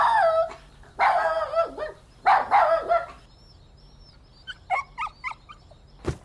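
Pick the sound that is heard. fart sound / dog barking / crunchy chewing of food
dog barking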